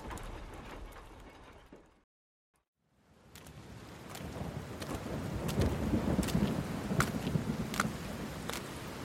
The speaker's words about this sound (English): Poor kid. Never had a chance in this storm.